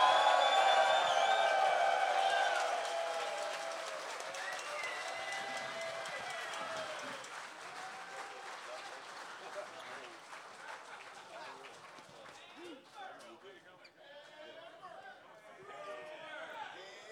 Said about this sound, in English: But I want you to come on and give a big round of applause for Carl Hamburger and producer Chris.